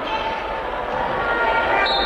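A basketball bounces on a hardwood court during an inbound bounce pass in a college game involving Chadron State, the thumps partly buried in a steady wash of crowd noise and arena echo.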